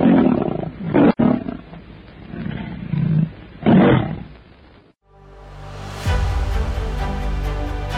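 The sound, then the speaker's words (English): A saber-toothed tiger roars in several deep, rasping snarling bursts over about five seconds in a lighted chamber at the end of a tunnel, in a Tarzan radio drama, then a loud dramatic orchestral music sting swells in and takes over. “It is a saber-toothed tiger!”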